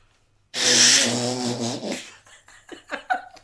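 A voice imitates one person farting on another: one loud, drawn-out, buzzy blowing noise lasting over a second, trailing into a few short sputtering bursts, with no talking.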